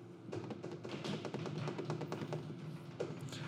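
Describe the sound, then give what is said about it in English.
A quick run of light taps drummed out in a steady roll as a drum roll for a big announcement, like fingers or sticks beating on a hard surface, fairly loud and lasting a few seconds with no talking over it. “And then, big announcement, drum roll.”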